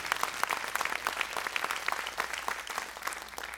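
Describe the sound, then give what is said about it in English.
A church audience claps steadily for several seconds, a dense patter of overlapping handclaps at moderate loudness with no voices standing out. “Oh, you need to clap because you're ready too.”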